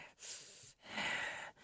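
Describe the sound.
A voice imitates a raspy-voiced phone caller's heavy breathing: two long, hoarse breaths in a row, the second louder and longer, with no words spoken.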